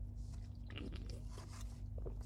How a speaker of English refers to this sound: I'm kind of out of breath. Let me take a sip.